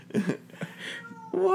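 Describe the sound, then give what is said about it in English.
A female cat lets out a string of strained, distressed meows, the cries wavering and breaking before a final louder, drawn-out wail. “Sounds like she's dying.”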